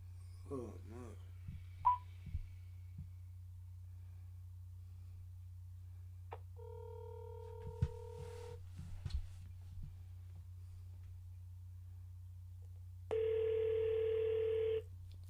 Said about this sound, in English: Let me call homegirl, see if she answers the phone. Right. I told her I was going to call her.